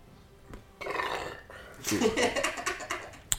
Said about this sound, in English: That was a 7 on the burp read earlier.